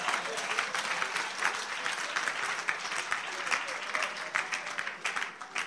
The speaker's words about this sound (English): Go ahead and give the Lord a clap of it.